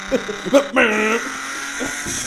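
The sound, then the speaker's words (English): A Jaguar E-type car's engine revs briefly with a steady, buzzing drone as the driver rev-matches up through the gears, then settles into a continuous rumble while voices speak over it. “It's a Jaguar engine.”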